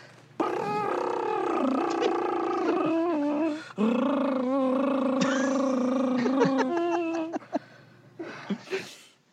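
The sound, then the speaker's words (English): A voice imitates a Michael Scott-style drum roll to ring in the number one pick, a long, loud, buzzing trill that wavers in pitch, pauses briefly midway, then carries on for about eight seconds before trailing off in a few short bursts. “Is that a Michael Scott drum roll?”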